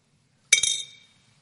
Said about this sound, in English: It doesn't like waft down. It's like boing. Gravity exerts an influence on that nut. It pulls it down super fast and it's at the bottom of the water.